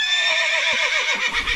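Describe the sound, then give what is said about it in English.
A loud horse neigh sound effect with a high, quavering whinny that descends in pitch, ending in a brief snort. No speech, just the single call. “I just pressed a random sound effect. That I'm hung like a horse?”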